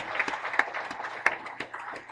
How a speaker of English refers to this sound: okay, everybody who learned English as a kid, I want you to do something. Give these folks an applause.